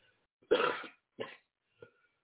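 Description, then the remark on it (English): A loud, harsh cough from a person with asthma, followed by two shorter, weaker coughs spaced about half a second apart, each quieter than the last, with no talking. “And the cough is still there, but they gave me a machine to take these treatments of Buterol.”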